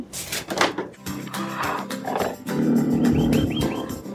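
Big cats at Big Cat Rescue roar and growl in a loud, throaty series of bursts, deep rumbling calls overlapping one another and building into a sustained, grinding roar over the last half.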